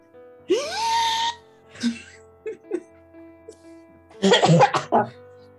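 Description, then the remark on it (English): A voice makes a breathy, whining noise that rises in pitch like a Hoover vacuum cleaner starting up, followed by a few short grunts and a burst of harsh coughing, made shortly after recovering from COVID. “You sound like a Hoover trying to start up.”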